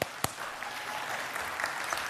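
An audience breaks into applause, a dense, steady patter of many hands clapping at once, heard from a short distance with a single sharper clap near the start.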